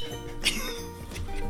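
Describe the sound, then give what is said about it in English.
Glasses clink once in a toast, a single bright ringing tap near the start, heard over a steady hum of background noise with no clear talking. “Let's just drink again. Cheers.”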